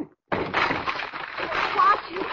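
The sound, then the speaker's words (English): A locked and bolted door is kicked in: a sudden loud crash after a brief silence, then about two seconds of harsh, noisy cracking and splintering wood. “Whoever it was locked and bolted this door, I'll have to kick it down.”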